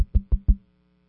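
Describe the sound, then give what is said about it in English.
Four quick, evenly spaced knocks on a house door, as by a Domino's pizza delivery, dull and solid with a short wooden ring after each. Fairly loud, with silence after the last one. “Well, they'll knock on the door a little bit.”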